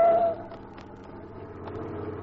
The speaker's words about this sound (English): Oh, look out for that truck!